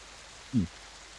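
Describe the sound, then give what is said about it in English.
Steady, soft rain hisses evenly throughout, with a brief low thump partway through. “The rain kind of messes it up, but it's good enough.”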